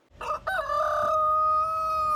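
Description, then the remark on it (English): A single rooster crows loudly on a farm beside a castle, a harmonic call that breaks at the start and then holds a long, steady drawn-out note until the end. “There is a farm on the side of the castle with goats, chickens, emus, and more.”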